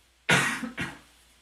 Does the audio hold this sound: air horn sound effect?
no